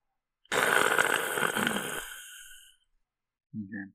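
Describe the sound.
A voice imitates heavy, raspy breathing on the other end of a phone line: one long drawn-out exhale lasting about two seconds, fairly loud, followed after a pause by a brief low vocal murmur.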